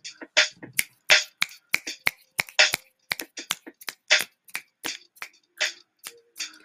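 A steady run of crisp finger snaps, about three per second, sharp and bright with slightly uneven timing. No voices come through, only the dry clicks repeating.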